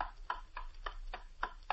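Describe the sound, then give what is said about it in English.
A clock on a shelf ticks steadily and quietly, six crisp, evenly spaced ticks at a brisk pace, heard alone against a faint low hum with no voices. “All is silent save for the ticking of a clock on the shelf.”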